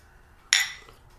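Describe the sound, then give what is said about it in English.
Beer glasses clink together once in a toast before a beer is tasted, a sharp, bright ring that lingers and fades over quiet with no talking. “We're gonna try this beer. Cheers.”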